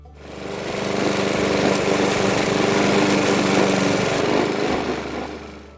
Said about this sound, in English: Yes, the first cut of spring. It was the invention of the lawnmower by a Gloucestershire engineer, Edwin Budding, in 1830 that replaced the scythe